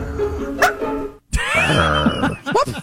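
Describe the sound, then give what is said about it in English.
A man who identifies as a wolf yips at a body of water, a run of high, strained yips and yelping cries, broken by a short pause, with rising and falling pitch and ragged, breathy edges. “I want to hear the wolf guy again because that yip is particularly good.”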